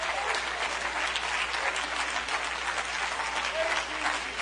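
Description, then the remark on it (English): An audience claps their hands unto the Lord in thanks, in steady, dense applause lasting several seconds, a continuous patter of many overlapping claps at an even, fairly loud level. “Oh, you ought to clap your hands unto the Lord and thank Him.”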